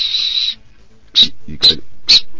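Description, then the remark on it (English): A Fox 40 Classic whistle with FH umpires branding gives one steady, shrill blast of about half a second, then after a pause three short, sharp blasts in a quick, even rhythm. All are loud and high-pitched. “And inside is a beautiful Fox 40 Classic. I've just ruined the packaging in my mint condition. Don't worry, mate. It's all about the whistle.”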